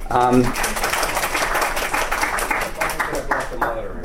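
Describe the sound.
An audience applauds to welcome a moderator at a panel event, with dense, steady clapping that holds at a fairly even loudness for about four seconds, a voice briefly audible at the very start.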